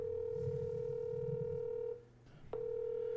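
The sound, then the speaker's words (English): A steady telephone tone hums over a low murmur, cuts out for a moment, then a short keypad beep sounds and the tone picks back up, with no one talking, as a call is placed to the speaker's father. “First call from the podcast live to my dad to ask him if I had an imaginary friend.”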